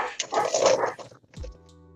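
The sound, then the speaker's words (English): A dog barks in a short, loud burst, followed by a brief low whimper and a fading tonal hum; no one speaks. “There's my dog barking in the background.”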